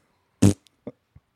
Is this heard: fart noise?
yes